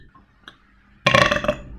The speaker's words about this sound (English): Whoa. That was a solid 10 out of 10. If you don't like burping, I'm a big burper. I think it's entertaining and it's fun, and I like to rate my burps and other people's burps.